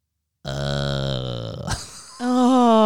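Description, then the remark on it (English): A man imitates his own snoring with his voice: a long, low, buzzy rasp, then a brief pause and a steady, higher-pitched sung tone that holds loudly to the end. “I mean, I'm asleep, but my wife tells me sometimes there's a tone to my snores, like...”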